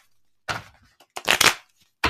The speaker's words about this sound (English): So you're going to hear me shuffle the cards. Let me show you what this sounds like so you'll know what it is.